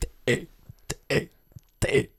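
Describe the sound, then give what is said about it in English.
A person belches out letters of the alphabet: three guttural, burped syllables in a steady row, fairly loud, with brief clicks and breaths between them. “I can belch the alphabet.”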